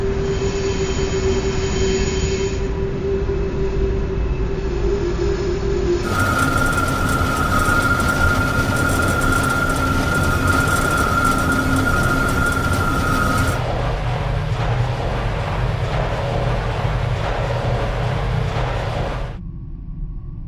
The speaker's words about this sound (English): And, I mean, the good thing about it was I got to record some trains.